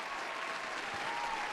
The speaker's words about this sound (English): Give her a hand clap, y'all.